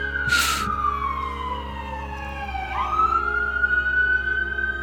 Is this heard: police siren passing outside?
yes